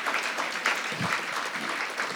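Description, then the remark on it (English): A live audience at a comedy show claps steadily in answer to a question put to them, a dense wash of many hands applauding at once with no clear individual beats, sustained and fairly loud throughout. “All right, you guys clap if you'd rather hear a baby crying as you're trying to make love to your spouse, okay?”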